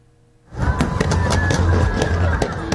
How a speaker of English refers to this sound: Fireworks pierce the sky with colourful sparks emanating from a bridge in the sea. It's a magical sight to behold.